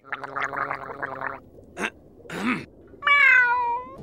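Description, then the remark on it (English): A drawn-out, mournful cat meow rises and falls near the end, preceded by wet gargling, sputtering sounds and a brief burst of noise, all fairly close and loud. “Gary being all sad and meowing with this meow.”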